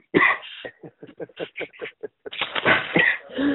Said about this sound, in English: Okay, I'm coughing.